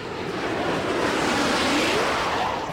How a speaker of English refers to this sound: the Nazi's rocket whooshes by.